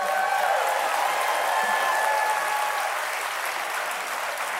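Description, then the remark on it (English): A live audience applauds steadily, a dense wash of clapping that stays loud and even throughout, with no voices rising above it. “They're a nice crowd.”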